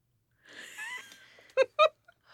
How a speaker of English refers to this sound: Stop yawning. I was making like a... I don't know what I was doing.